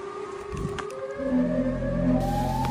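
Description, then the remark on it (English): A siren wails steadily, its tone sliding slowly upward and growing louder over a low rumbling background, with no voices. “And if you hear a siren, run.”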